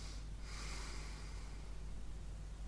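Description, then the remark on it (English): A sleeper's snorting gasp as breathing restarts after thirty-three seconds without breathing, a pattern repeating through the night: a brief rasp, then a longer noisy intake of breath, quiet over a steady low hum. “Thirty-three seconds later, and … finally starts breathing again.”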